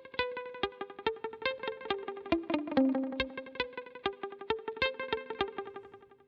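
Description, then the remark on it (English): A clean electric guitar played through a multi-head echo picks a melodic line, each note smeared into several rhythmic echo repeats that stack and overlap, giving a shimmering, cascading tail. No voices. “You can hear what's going on, a multi-head thing going on.”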